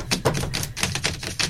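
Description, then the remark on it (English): Rapid clacking of manual typewriter keys as stand-up comedy material is written, a quick run of sharp mechanical strikes in an uneven rhythm, fairly loud, with no voices. “I'm doing stand-up in the new year, so I've decided I'm going to write it all on a manual typewriter, so that's what I've been doing.”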